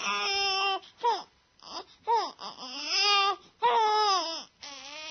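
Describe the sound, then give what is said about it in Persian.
An infant cries loudly in several wavering, high-pitched wails separated by short breaths, with no talking over it. “بچه شیرخواره ها اینجوری.”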